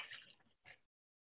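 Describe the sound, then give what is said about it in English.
A short wet slurping and gulping of someone drinking water from a plastic Gatorade bottle, two quick bursts of liquid sound about a second long, then silence. “I'm drinking out of a Gatorade bottle.”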